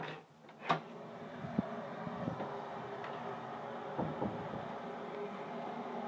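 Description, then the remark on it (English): A noisy kettle boils for a fresh cup, with a steady rumbling roar and hiss, broken by a few sharp clicks and taps, with no one speaking. “Noisy kettle. I think I'm going to have a fresh cup.”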